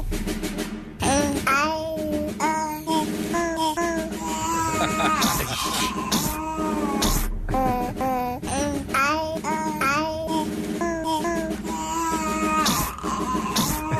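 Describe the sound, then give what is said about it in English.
A female cat's pitched meows, including her sneeze, are edited into a Christmas-time song melody, sung note by note in quick rhythmic phrases, loud and continuous over a layered musical backing, with a brief pause around the middle. “she would make enough tones that she was almost singing musical notes”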